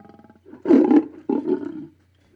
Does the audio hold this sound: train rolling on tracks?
no